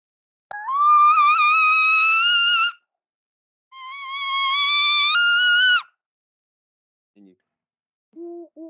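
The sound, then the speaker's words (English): An owl scream imitated on a mouth call, used in turkey hunting to locate a gobbler: two long, loud, reedy wails of about two seconds each, pitch rising slightly, then a few short, faint low notes. “This is what it sounds like if I try to do it on a mouth call.”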